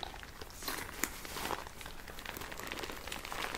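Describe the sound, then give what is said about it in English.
A soft, continuous crinkling of a Swiss first aid kit pouch with a heartbeat medical logo being squeezed, with dense crackly rustles and a few sharper snaps throughout, fairly quiet and with no talking. “Make some nice crinkles if you squish it.”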